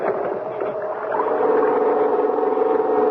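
A small gasoline engine sputters as its starting rope is pulled, then catches and settles into a loud, steady drone with a buzzing, throaty tone: a pull-start generator starting up and running. No one speaks.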